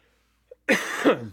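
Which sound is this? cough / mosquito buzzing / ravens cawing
cough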